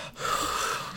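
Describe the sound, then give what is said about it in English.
A person imitates the sharp, effortful breath of a dancer lifting a partner into the air, one strained, airy gasp lasting about a second, moderately loud, with no talking around it. “it takes a lot of strength to lift someone up, and so Vronsky's kind of breathing a little bit too”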